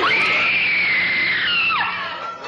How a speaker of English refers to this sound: It was a full wall and you can hear the screams. But there's a scream if you want to add it in there. I'll add it in right now.